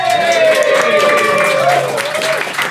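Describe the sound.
A pub audience claps steadily while voices cheer and whoop over the top, a loud, dense mix of hand claps and sustained, pitch-sliding shouts lasting a few seconds.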